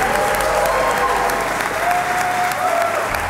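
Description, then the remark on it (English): An audience claps continuously, a dense, steady wash of applause filling the whole stretch at an even, fairly loud level, with no voices breaking through. “Let's do a round of applause at least to...”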